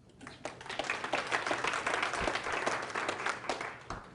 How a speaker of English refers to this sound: Let me share. Round of applause.